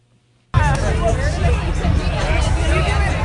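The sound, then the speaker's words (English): A steady wash of crowd chatter on Court Street at almost 11 p.m. on a Saturday as people head to the bars, many overlapping voices blending into a continuous loud murmur with no single speaker standing out, starting abruptly after a brief silence. “It's almost 11 p.m. on Saturday, and many people are headed to the bars.”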